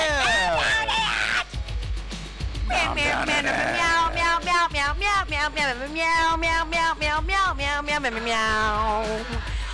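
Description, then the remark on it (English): Drawn-out, sliding meows fill the stretch almost without pause, loud, apparently human voices imitating a cat together, with pitch swooping up and down in wavering, yowling phrases. “Meow.”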